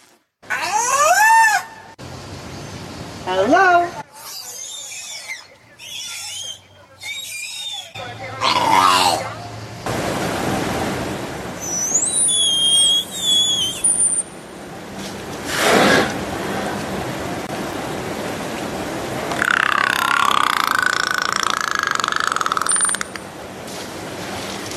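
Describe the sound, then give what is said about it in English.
A killer whale imitates the human word "hello": a series of squeaky, warbling whistles and raspy bursts, loud, broken by short pauses and ending in a high, sliding call. “So killer whales can say hello.”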